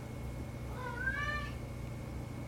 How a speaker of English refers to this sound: Is that your fucking cat? Yeah. How many cats do you have now? Just two.